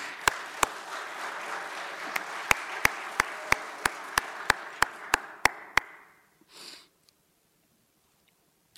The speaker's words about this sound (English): It's a good place to clap. Come on.